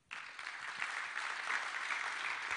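A crowd breaks into steady applause for a visiting pastor, a dense wash of many hands clapping that starts abruptly and holds at an even, moderately loud level throughout, with no voices standing out.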